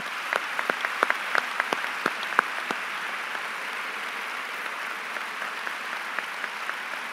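An audience applauds with a steady, dense wash of clapping, sharper individual claps standing out near the start before the sound settles into even, continuous applause with no talking.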